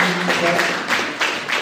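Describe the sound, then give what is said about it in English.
The speaker claps their hands about five times while honouring a friend, in a steady, even rhythm, each clap a sharp, moderately loud smack, with a faint murmur of voice underneath at the start. “Yeah, you can hear me clap.”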